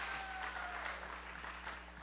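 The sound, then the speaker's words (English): A crowd applauds steadily for their pastors, dense overlapping hand claps forming a continuous patter of moderate loudness, with no voices standing out above the clapping. “And give your pastors a great hand clap tonight, would you?”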